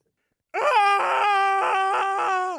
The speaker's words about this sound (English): Did you like the jump scare intro? Yeah, I really screamed there. You did, at least once.